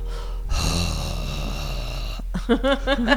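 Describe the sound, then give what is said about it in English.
A long, raspy exhale of heavy breathing from a woman asleep in a creepy house, fairly loud, followed by a brief low voiced murmur near the end. “Was that her breathing? Yes, creepy.”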